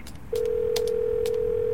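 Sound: telephone dialing tones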